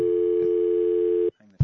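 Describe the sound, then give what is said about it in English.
A steady, unbroken telephone dial tone hums loudly for over a second, then cuts off abruptly, followed by a brief quiet pause and a short burst of noise. “We got a dial tone.”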